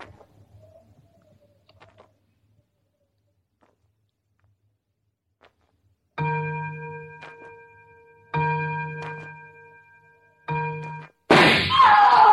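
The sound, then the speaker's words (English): A clock set on a stump in a field strikes three slow, deep, resonant strokes about two seconds apart after a near-silent stretch, the third abruptly cut off by a sudden loud, harsh burst of sound. “I must have my ears free to catch the first stroke of the clock.”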